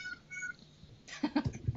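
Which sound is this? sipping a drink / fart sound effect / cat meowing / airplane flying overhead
cat meowing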